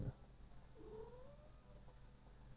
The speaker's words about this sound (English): Yes, cat. Hello. Oh, are you going to claw me because I'm not directly doing anything for you?